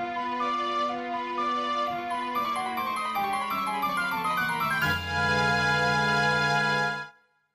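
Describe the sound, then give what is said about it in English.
A bright video game tune, the Song of Soaring from Majora's Mask, plays alone: a stepping melody of clear, synth-like notes over a steady bass, swelling into a sustained held chord before cutting off after about seven seconds. “It's the Song of Soaring.”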